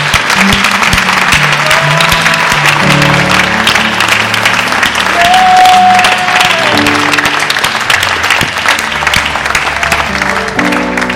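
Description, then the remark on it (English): A church audience at Easter applauds loudly and steadily as a clap offering to God for about eleven seconds, a dense wash of clapping over sustained keyboard chords that shift and swell beneath it. “Come on, let's give him a clap offering.”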